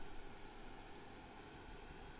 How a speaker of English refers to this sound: Here, listen. Can you hear that? Oh, wait. That's my fan. Oh, yeah, I haven't heard my computer do that yet.